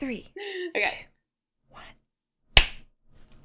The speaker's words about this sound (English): 3, 2, 1. Cool. I'm recording now too, so we'll just figure it out with the clap.